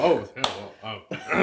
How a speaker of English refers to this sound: He keeps clapping.